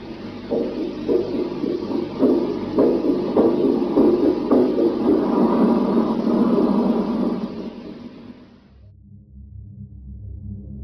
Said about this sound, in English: Supporting that claim was another audio clip from the same flight, which was interpreted as a failing heartbeat.